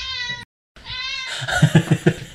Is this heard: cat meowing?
yes